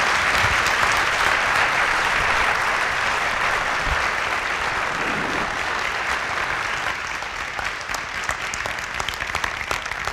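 A crowd applauds the panelists at the close of an evening panel discussion, steadily for about ten seconds, a dense, even wash of many hands clapping at once, loud and sustained, with occasional sharper individual claps near the end.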